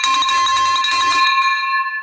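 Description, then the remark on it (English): A big silver metal bell clangs loudly and rapidly several times, rung to celebrate a recent property deal, then stops, leaving a bright, sustained ringing tone that hangs in the air. “Are you guys ready for this silver, big silver bell?”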